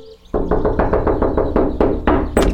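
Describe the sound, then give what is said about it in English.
A quick series of firm knocks on a door, about ten raps in a steady rhythm with a brief pause near the end, loud with no voices. “So I guess we should just knock on the door. Can you knock?”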